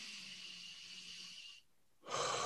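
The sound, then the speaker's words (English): A slow, deep, conscious breath drawn in, airy and steady for about a second and a half, followed by a short silence and then a louder rush of breath. “Every time I take a conscious breath in, I know I'm breathing in more love.”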